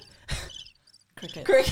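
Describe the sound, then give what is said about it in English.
Crickets chirp in two short, fairly loud bursts separated by a near-silent pause, with a thin high trill lingering faintly in between. “Cricket. Love this. Not the cricket.”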